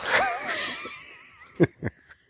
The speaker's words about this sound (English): Watch me yawn into the mic. Please don't, because it's not just rude to me. It's rude to people listening.